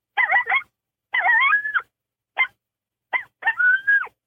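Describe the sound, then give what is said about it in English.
An imitated coyote challenge howl: bursts of sharp, raspy barks broken by two short, wavering howls, loud, with brief silences between and no talking. “If you'll just start speaking the way a coyote talks, and that's just single lone howls, and then you can get more advanced into the challenges, which is just like the regular howl, but it's just shorter and they bark a lot more in front of us.”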